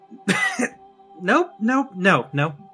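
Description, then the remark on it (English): A voice imitates coughing: one harsh, breathy burst followed by three or four voiced, hacking coughs in an uneven rhythm, with no other sounds around them. “starts coughing and just is like”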